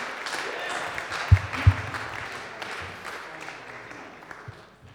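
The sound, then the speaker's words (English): An audience applauds steadily for several seconds, welcoming speakers coming up to talk about a church family weekend away, a dense, moderately loud patter of many hands, with a couple of low thumps near the start and faint voices mixed in. “So can we give them a bit of a round of applause and welcome them?”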